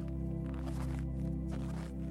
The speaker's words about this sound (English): You hear the thick snow crunch beneath your boots as you walk.